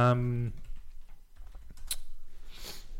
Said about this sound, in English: For those that are good at remembering keyboard sounds, that's you can now log into our Google Drive. Oh my god, you just key logged up P word.